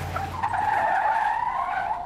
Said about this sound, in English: The car screeched to a halt in the middle of the road.